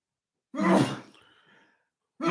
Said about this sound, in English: I got to sneeze.